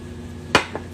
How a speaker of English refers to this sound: Because I promise you, I need a sip of coffee. Hang on.